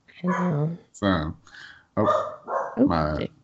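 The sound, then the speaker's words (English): Dogs bark in a quick, uneven series of four or five loud, drawn-out, almost yowling barks, with brief gaps between them and no one talking. “Dogs are barking.”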